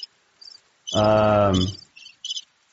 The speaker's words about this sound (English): Right? No? Crickets instead? Okay. I know, it's cheesy.